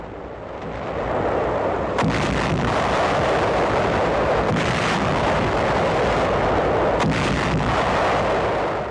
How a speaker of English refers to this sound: U.S. guns battle Jap planes and two Jap destroyers. A three-day naval bombardment of the entire Lingayen Gulf area.